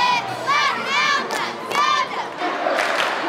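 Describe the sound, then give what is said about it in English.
A crowd of hundreds roars and cheers continuously for the home team at a Friday night high school football game in Quincy, Illinois, with high rising shouts and whoops bursting out over a steady wash of voices. “It's Friday night in Quincy, Illinois. And hundreds have come out for the home team.”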